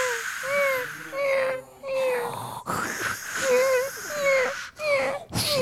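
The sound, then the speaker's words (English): Someone imitates a walrus, as part of imitated beach sounds, with a series of loud, drawn-out moaning groans whose pitch wavers up and down, broken by a few short, harsh breathy bursts. “Oh, that's a walrus.”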